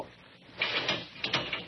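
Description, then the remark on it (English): A heavy metal cell door rolls shut with a grinding scrape, followed by a couple of sharp mechanical clanks as the lock catches, locking a man inside; fairly loud, with no one speaking. “Hey, you got me locked in here.”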